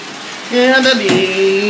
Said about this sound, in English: Okay, I'm gonna shut off the water there. I'm sure that'll help with the audio. It's probably hard to hear me with that water running.